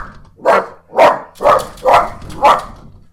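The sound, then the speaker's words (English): A dog named Pepper barks five times in a steady rhythm at other dogs seen through the window, each loud, mid-pitched bark spaced about half a second apart, with no talking over it. “Two, there are other dogs in this neighborhood. You can't just bark on them when you see them on the window.”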